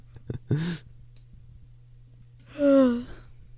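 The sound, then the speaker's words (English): A short breathy vocal sound, then after a pause a person lets out a long, drawn-out yawn with a voiced, wavering tone, fairly loud, over a steady low hum. “Yawning. Heretics. Yawning heretics. Yawn.”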